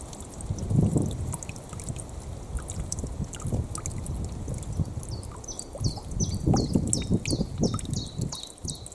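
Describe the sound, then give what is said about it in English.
Water sloshes and splashes in uneven surges, fairly steady, while a bird chirps in a quick repeating series through the second half. “Fun fact number 114, I love the sound of water.”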